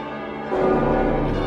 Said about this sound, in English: I hear a clock tower.